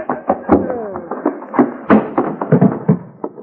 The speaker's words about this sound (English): Hoppy, you knocked him plumb through the screen door.